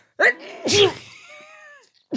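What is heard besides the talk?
sneeze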